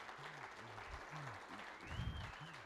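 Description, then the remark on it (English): A church audience at Calvary applauds steadily throughout in a morning welcome for two guests, a dense wash of clapping that swells slightly toward the end, with a few voices calling out and a brief high whistle over it. “So would you give a big Calvary welcome this morning”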